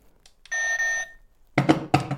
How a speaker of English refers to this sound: So get your buzzer noises.